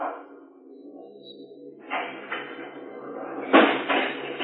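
A heavy garage door rumbles and clanks shut, with a first rattling bang followed by a louder slam and a brief metallic echo, over a low steady hum.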